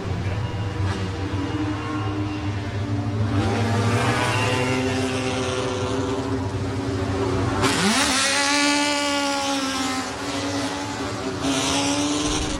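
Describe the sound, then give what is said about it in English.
Loud historic racing car engines rev and roar continuously, with rising and falling pitch sweeps as the cars accelerate and pass by, one sharp surge near the middle. “Talking to Andrew Jordan, who's just literally climbed out of the Bizzarini, you're in one of the cars that has been the most successful here in recent years.”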